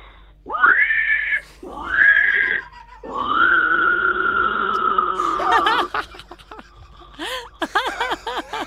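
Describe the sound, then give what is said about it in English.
A man's voice imitates pig squeals: a few short, high, strained squeals, then a longer drawn-out one, ending in rapid grunting snorts and choppy squeaks, loud with no talking. “What's your other thing to add to the CV? Pig squeals.”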